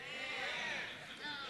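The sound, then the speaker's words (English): An audience of many voices imitates a newborn baby's wailing cry, a loud, overlapping chorus of wavering 'wah' sounds that sustains for the whole moment without pause. “So when you were born, when you started, wah, wah, can I hear you guys do that?”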